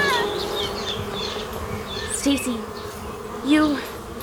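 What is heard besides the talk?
swarm of bees buzzing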